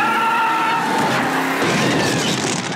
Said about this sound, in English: Look at that car burn! Does it get any better than this?